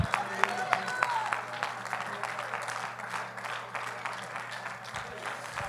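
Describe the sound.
A church audience claps steadily together in praise, a dense wash of overlapping handclaps lasting several seconds, with a steady low hum beneath and faint voices mixed in.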